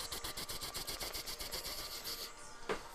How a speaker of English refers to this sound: I hear a helicopter. Do you? Coming down?